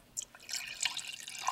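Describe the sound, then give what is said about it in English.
Wine trickles and splashes steadily from a decanter into a glass, a long, continuous liquid pour with small bright drips and gurgles, heard alone without any talking. “That was our first decanter pour to start the show. It's a long pour.”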